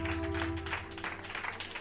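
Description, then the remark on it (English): A church audience claps in worship unto the Lord, a dense, steady patter of many hands, continuous throughout with no clear beat, over a low sustained tonal hum. No one speaks. “If you are clapping, clap because you are doing it unto the Lord.”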